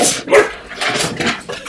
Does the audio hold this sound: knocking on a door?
no